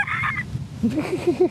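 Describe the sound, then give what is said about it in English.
A person's voice mimics a crow, giving a harsh, nasal caw followed by a string of short, throaty honking calls, fairly loud, with no other talking. “That was my crow noise.”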